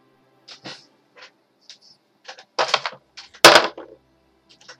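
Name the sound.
dice being rolled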